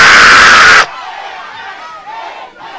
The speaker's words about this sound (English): I don't know if you're shouting this amen 3 times. Before you complete this amen the third time, I said that sickness is on fire.